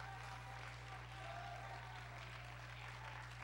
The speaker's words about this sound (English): Somebody ought to clap their hands to the Lord.